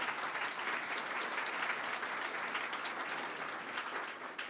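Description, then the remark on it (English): Sustained audience applause for Ms. Mary Norwood at a panel discussion, a dense steady wash of many hands clapping at an even, fairly loud level throughout, with no talking over it. “Let's give a round of applause to Ms. Mary Norwood.”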